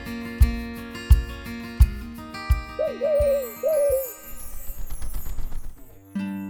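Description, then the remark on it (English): A few wavering owl-like hoots rise over a steady, thumping rhythmic backing, with more busy musical sound filling the second half before it ends abruptly. “What incredible sounds Tiny Owl can make to remember them all from each different place.”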